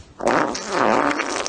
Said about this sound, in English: Here's the fart. Hit me with your best shot.